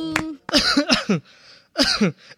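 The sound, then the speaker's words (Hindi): A 22-year-old man coughs, two rough clusters of harsh, throaty bursts separated by a brief pause, loud and raspy with no other voices; he puts the cough down to a scratchy throat from pollution. “बेटा तुझे कब से खांसी हो रही है, अच्छे डॉक्टर से दवाई क्यों नहीं ले लेता?”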